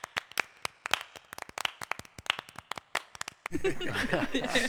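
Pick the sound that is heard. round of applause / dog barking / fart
round of applause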